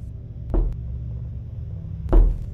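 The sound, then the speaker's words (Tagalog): Two slow, heavy knocks of a fist on a wooden door, spaced well over a second apart, each a dull thud over a low steady background hum. “Parang dibilang ang bawat pagtatama ng kanyang kamao sa dekahoy kong pintuan.”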